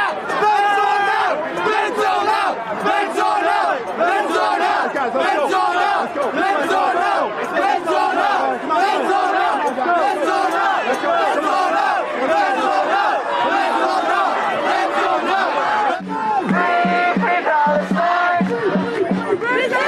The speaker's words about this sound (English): Here's some audio from one of the other protests in the same area.